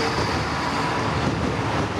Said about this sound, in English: The Dublin Sligo line. The train will be a soundtrack to his personal life.